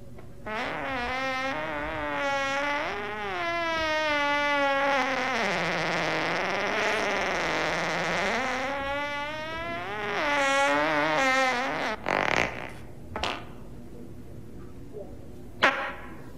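human body sound, fart

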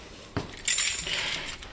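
household object, ring of keys jangling

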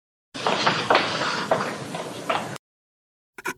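footsteps

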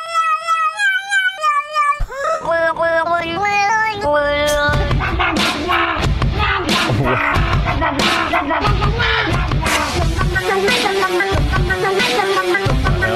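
animal, cats meowing

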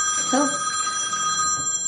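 signal or alarm, telephone ringing

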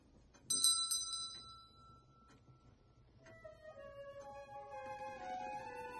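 signal or alarm, bell ringing

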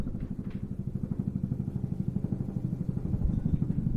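vehicle, helicopter flying overhead

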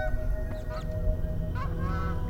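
bird, canada geese honking

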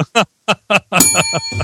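signal or alarm, bell ringing

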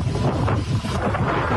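nature, strong wind gusts

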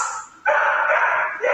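animal, dog barking

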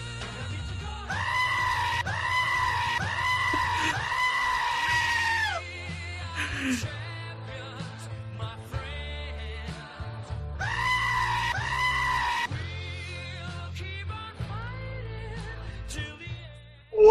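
animal, goat screaming

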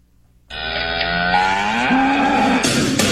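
animal, cow mooing

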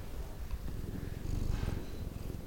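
animal, cat purring

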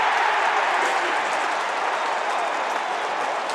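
crowd, stadium crowd cheering

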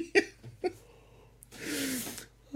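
human body sound, man yawning

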